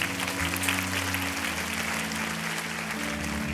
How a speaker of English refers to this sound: Come on, let's clap our hands one more time.